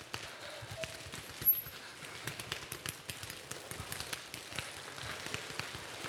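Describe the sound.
An audience, divided into sections, creates a rainstorm with their hands, starting by rubbing them together, a dense, irregular patter of many small slaps and taps that stays fairly steady and sounds like rain drumming on a surface.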